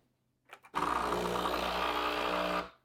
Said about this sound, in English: We're gonna come over here to my espresso machine. We're gonna turn it on.